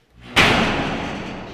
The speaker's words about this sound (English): By the way, the door slams.